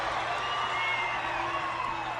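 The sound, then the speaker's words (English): A huge wrestling arena crowd roars and cheers wildly as Sting fights Luger at Battle Bowl, a dense, loud wall of voices that stays at full intensity without letting up for the whole moment. “This crowd is going crazy.”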